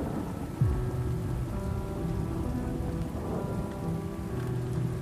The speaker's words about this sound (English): Make yourselves comfortable, campers. Enjoy the sound of the trickling rain through this cold autumn night,